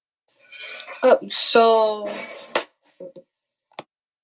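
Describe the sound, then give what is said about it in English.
Dishes clatter in the background during a conversation, a short burst of clinks and scrapes, one ringing clank, then a few sharp, isolated taps trailing off into quiet. “We heard the dishes in the background.”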